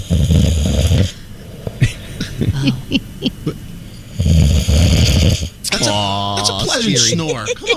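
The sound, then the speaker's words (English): Loud sleep apnea snoring: two long, rough rasping snores separated by a quiet gap filled with soft breathy noises, ending in a strained, wheezy, gasping snort. “Listen, you know a sleep apnea snore when you hear it, and that was I know.”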